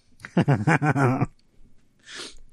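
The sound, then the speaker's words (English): A human sneeze: a wavering, voiced build-up of short gasping sounds, a brief pause, then a soft, hissing burst of breath. Nobody talks. “Sorry, I had to sneeze, and there's no real way to, like, I don't want to do it in the mic and in your direction, so.”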